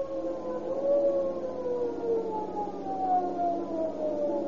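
A police squad car siren wails steadily, its tone sliding slowly up and down over a low rumble, with no voices heard.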